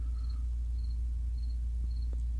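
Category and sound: insect, cricket chirping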